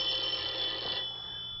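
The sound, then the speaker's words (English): A telephone bell rings in a single bright, high-pitched burst lasting about a second, then trails off into a faint steady hum. No one speaks. “Just sit there until I answer the phone.”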